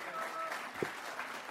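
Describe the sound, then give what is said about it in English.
Steady audience applause, a dense wash of many hands clapping at moderate volume with no pauses, as a speaker makes her way out from the aisle. “Keep the applause going as she makes her way out from the aisle there.”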